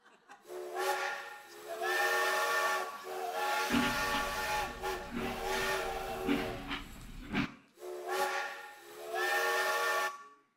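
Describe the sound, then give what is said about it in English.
A train whistle blows three long, loud blasts in a row, steady and slightly hissy, with a deep rumbling underneath during the middle blast, from a very long train at Crescent. No one speaks. “The longest train in the history of mankind.”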